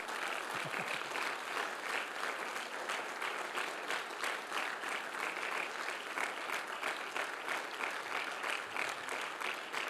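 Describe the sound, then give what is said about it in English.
A church audience claps hands steadily for about ten seconds during a sermon, answering the preacher's call to clap. It is a dense, even wash of many overlapping claps at a constant loudness, with no voices standing out. “Clap your hands if you have an idea who that man is.”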